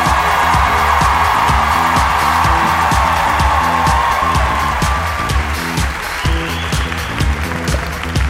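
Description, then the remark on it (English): A comedy show audience claps and cheers loudly and steadily for several seconds to welcome comedian Sarah Schaefer onto the stage, a dense wash of applause over a thumping rhythmic beat that eases slightly toward the end. “So why don't you guys start clapping, get in for Miss Sarah Schaefer!”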